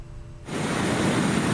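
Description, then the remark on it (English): After a brief quieter moment, a loud, broad roar of crashing surf surges in and holds steady, a dense wash of tall breaking waves battering the shore along the coast of Hualien, Taiwan, raising plumes of sea spray as the periphery of Typhoon Murar arrives, with no voices. “Along the coast of Hualien, tall waves batter the shore, raising plumes of sea spray.”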